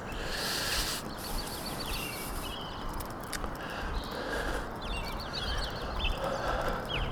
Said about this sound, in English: Why don't we know the things that the birds know? If we knew the things that the birds knew, would we be singing like this all the time too? Is that what we'd be doing?